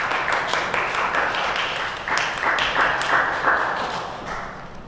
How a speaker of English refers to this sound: Let's give the band a good round of applause.